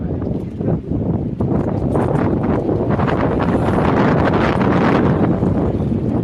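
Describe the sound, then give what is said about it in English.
Loud, steady wind buffeting a microphone during a YouTube live stream at night, a continuous low rumbling roar with gusty surges that fills the whole stretch, with no clear speech over it. “It's a little bit windy, but yeah, just bear with me.”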